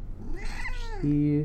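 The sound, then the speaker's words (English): A single drawn-out meow from the cat Fliffo, rising then falling in pitch, fairly loud, followed by a steady low tonal hum. “Here's the cat.”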